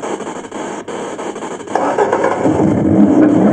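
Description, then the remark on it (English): A car engine being jump-started with cables attached to another car's battery, turning over with a rough, noisy drone that swells louder partway through as it revs, continuous with no talking. “She's going to jumpstart Dad's car.”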